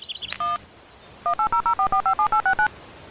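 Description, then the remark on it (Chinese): A single telephone keypad tone, then after a short pause a quick, steady run of about eleven clear dialing beeps, with no voices, as a phone call to Lao Gao is dialed at a police bureau autopsy room. “梁教授，您稍等啊，我打个电话。”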